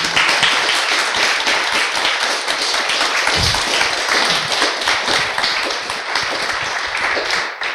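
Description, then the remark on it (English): An audience applauds the speakers at the close of an evening event for several seconds, a dense, steady wash of many hands clapping at once, loud and even throughout before tapering slightly at the end. “Would you like to give our speakers a round of applause?”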